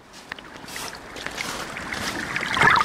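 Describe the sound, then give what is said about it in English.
Waves at St. Margaret's Bay in southeast England, where the Atlantic Ocean meets the North Sea, sweep over an underwater microphone: water sloshes and swirls in a continuous wash that builds gradually, with bright fizzing and bubbling bursts near the end. “Heard the sound of waves sweeping over my underwater microphone.”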